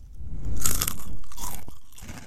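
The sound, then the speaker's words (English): Loud crunching of a crisp, spicy Funyun onion-ring snack chip being chewed, with repeated brittle cracks and crackly bursts over about two seconds, no talking. “It's real crunchy.”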